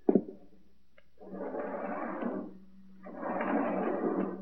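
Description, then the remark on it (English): A door being opened: a sharp clunk at the start, then two long, breathy whooshing hisses, moderately loud, over a steady low mechanical hum. “Hey, Mac, get the door open, will you?”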